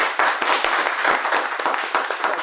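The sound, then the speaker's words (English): An audience applauds steadily, a dense wash of many overlapping hand claps, full and loud throughout with no voices over it. “This is a good applause.”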